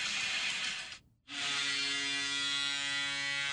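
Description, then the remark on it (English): A hockey goal horn blares as a loud, low, buzzy sustained tone that cuts out for a moment near the start, then resumes steadily over a dense roaring wash. “And that would be the only reason why I would say maybe we just go with the goal horn.”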